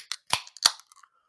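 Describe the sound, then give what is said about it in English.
A can of Trillium Double Dry Hop Mass Ave, a double IPA, cracked open: a light click, then two sharp metallic pops of the tab breaking the seal, followed by a short, soft fizz that quickly fades. “It's a double IPA from Trillium in 3, 2, 1, crack.”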